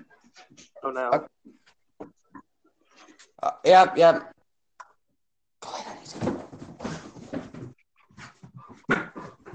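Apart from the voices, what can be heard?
dogs whimpering and barking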